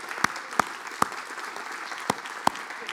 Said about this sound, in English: I'm not done, but you can clap.